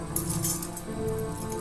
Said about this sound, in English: Oh my god! Those keys make me jumpy!